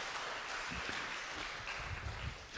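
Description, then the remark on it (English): An audience claps for the people who came up to help, in a steady, dense wash of many hands, the applause holding at an even level for a few seconds without a clear individual rhythm. “Can we give these guys a clap?”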